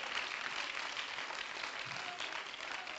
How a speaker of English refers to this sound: Let's clap our hands to him and give him praise right now.